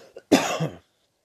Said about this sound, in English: I just have to cough right now. Apologize.